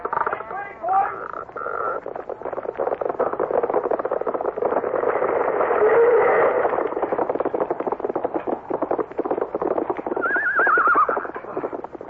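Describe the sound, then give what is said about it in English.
A horse gives a high, wavering whinny, then a steady, rapid clatter of hooves carries on loudly throughout, before another shrill neigh rises near the end, as the cowboy Tex jumps from his horse towards a cattle thief. “Tex jumps from his horse and leaps towards the cattle thief.”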